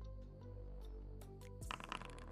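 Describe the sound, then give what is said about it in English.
A steady, low humming tone holds for over a second, then gives way to a quick burst of sharp, irregular clicks and clatters as dice are rolled and tumble across a hard surface. “the dice have spoken.”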